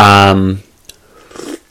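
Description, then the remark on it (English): A voice trails off, then after a small click comes a brief, airy slurp of someone taking a quick sip of a small coffee, followed by quiet. “If you hear me doing that, I'm sipping a wee coffee, you know, I have to perk myself up a wee bit.”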